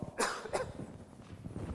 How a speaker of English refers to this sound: Now, let me cough.